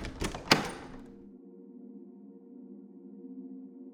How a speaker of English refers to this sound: There was no one at the door. And that's when it dawned on me. I knew who was at my door. Who was ringing my doorbell.